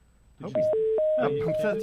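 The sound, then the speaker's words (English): A quick run of steady telephone dialing tones as a call is placed to Tom Gamboa, about six short beeps alternating between two pitches, sounding fairly loud over voices and dialing music. “Okay, I just dialed him.”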